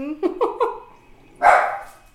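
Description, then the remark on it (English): Pet dogs at play bark in a quick run of three short, high yips, then a pause before one louder, harsher bark. “My dogs are having too much fun.”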